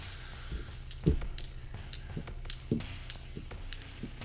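Dice click and clack against each other in an irregular series of sharp taps, fairly quiet, as they are sorted and counted by hand, with no one talking.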